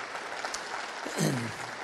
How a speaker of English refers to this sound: Please give a warm round of applause to Dr. Rick Scarborough.